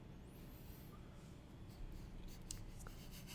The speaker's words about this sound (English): He keeps fiddling with pencils.